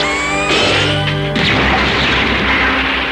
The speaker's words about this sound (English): With the pointing of his finger, he shoots a laser at the crane's pulley line, severing it, which sends one of the columns crashing to the ground.